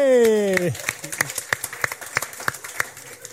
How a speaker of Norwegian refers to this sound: Ja, det går applaus!